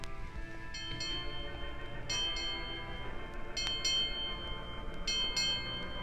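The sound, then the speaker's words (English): A ship's bell rings eight bells at the end of the night watch, its clear metallic strokes struck in quick pairs with ringing overtones, heard over a steady low rumble and no voices. “Eight bells. That was the end of the long night watch, and soon it would be morning.”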